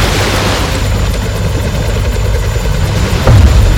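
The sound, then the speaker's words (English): A helicopter hovers over the water beside a boat in heavy waves, its rotor and engine roaring in a loud, steady wash of noise with a low rhythmic thumping, and a heavier rumbling burst near the end. “We can't get any closer without risking the chopper going in the drink.”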